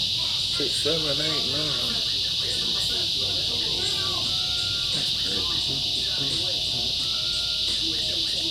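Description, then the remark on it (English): A steady, dense chorus of crickets chirps continuously at a moderate level, with indistinct voices murmuring faintly underneath. “You start itching until you heard them bugs.”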